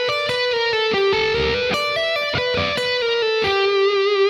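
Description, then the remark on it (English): A distorted electric guitar plays a quick blues lick, a series of hammer-ons from fret 10 to 11 to 12 and back down to 10, stepping up and down in pitch and repeating the pattern twice, loud and steady with no talking. “Okay, so what I'm going to do here is just make a pattern out of this or make a lick out of this that sounds kind of interesting.”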